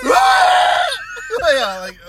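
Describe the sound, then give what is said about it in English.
A lizard creature's loud, reverberant scream holds a long shrill note, then breaks into a second, wavering cry that bends in pitch before fading, with nothing else around it. “It's like the Star Wars version of the screaming goat from all those years ago.”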